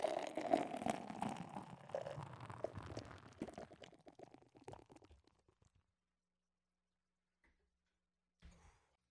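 Recursion IPA beer (6.5% ABV, 85 IBUs) pours into a glass with a bubbly gurgle for several seconds, the fizz gradually fading into near silence, followed by a brief soft knock near the end.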